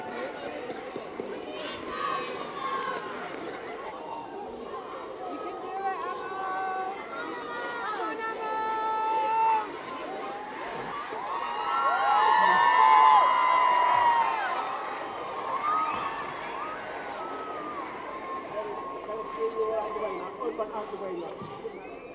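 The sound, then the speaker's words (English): A large crowd murmurs and chatters steadily, with the noise swelling into a loud burst of cheering and excited voices midway before settling back to a busy hubbub, as the crowd watches a girl puppet going up steps. “Listen to the crowd.”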